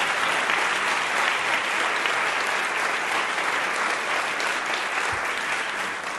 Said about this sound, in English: So I just want to invite a round of applause to all of them for the way that they did this.